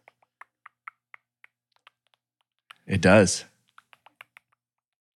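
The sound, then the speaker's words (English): Crisp keyboard-like typing clicks made by mouth, imitating the sound of an Apple keyboard with keyboard sounds on: a steady run of small sharp taps, briefly interrupted by a short spoken reply before the clicking resumes. “I think I can do a good Apple keyboard sound.”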